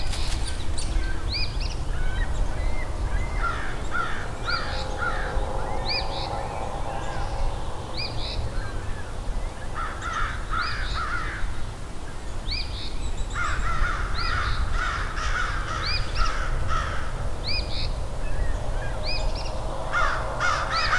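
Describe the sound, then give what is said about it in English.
Several crows caw loudly and insistently in harsh, repeated bursts, calls overlapping in agitated clusters over steady outdoor background noise. “Some very unhappy crows here.”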